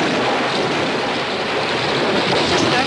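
Heavy rain pours down outside during a thunderstorm in a dense, steady hiss that fills the whole clip at an even, loud level, with no voices and no distinct individual drops.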